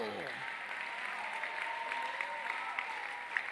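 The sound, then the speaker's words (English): An audience claps hands to give God praise in the building, a dense, sustained wash of applause with a steady rhythm, lasting the whole stretch, with a brief voice tone at the start and faint crowd noise underneath. “Whilst you worship, whilst you pray, whilst you shout, whilst you stand faithful, will you clap your hand and give God a praise in the building?”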